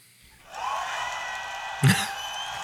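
A recorded game-show sound effect of crowd applause, played for a correct answer, swells in after a brief pause and holds steady, mixed with cheering and whoops, with a sharper shout breaking through near the end.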